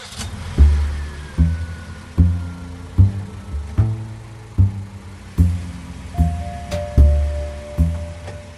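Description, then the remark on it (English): A car engine rumbles, its deep roar surging in steady, rhythmic bursts as the vehicle drives and accelerates, with no one talking. “He's getting in the car with Dana. All right. You ready to do or die? Always ready, Balin. Always ready. Good. Tail him.”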